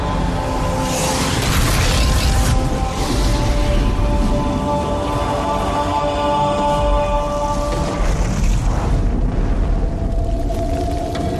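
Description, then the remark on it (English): A loud, sustained rumbling blast roars for several seconds, dense low-end energy with crackling bursts and a steady tonal hum, as a ship's whole payload blows up after takeoff, fading slightly near the end. “You take off. The whole payload blows up.”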